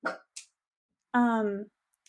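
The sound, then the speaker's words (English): A dog lets out one drawn-out, tonal bark that slides slightly downward in pitch, loud, after a couple of brief short noises, with quiet pauses around it. “My dog wanted to share something, I guess.”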